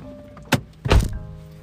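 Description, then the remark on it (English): A door thuds shut, a short sharp knock followed by a heavier low-pitched slam about half a second later, with a faint steady hum in the background. “oh, your door is open.”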